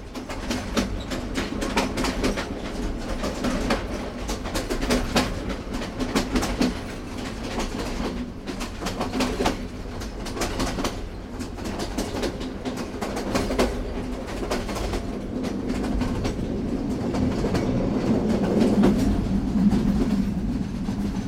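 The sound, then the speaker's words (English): A rickety old British colonial era train rattles steadily uphill into the mountains, heard from on board, its wheels clacking in a continuous rhythm over the rails beneath a loud, rumbling hum, with no one speaking. “Later, we spent 3 hours on a rickety old British colonial era train going up in the mountains. Sounded like this.”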